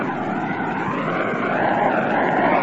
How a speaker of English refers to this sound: The tying run is on second base. Nobody out. The seventh inning. An old man pandemonium is dancing around here in the Polo Grounds. Listen to the lads and lassies roaring.